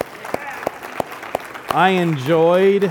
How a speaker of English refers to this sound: Has God not blessed our church with amazing gifts of people that were just able to teach just really powerfully while I was gone? Let's give them a hand.